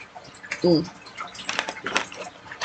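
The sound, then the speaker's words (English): A quiet sip of water: a short slurp followed by a few soft gulps and swallowing noises, with a brief murmured vocal sound just before. “So, excuse me as I pull the fuck down with a sip of water.”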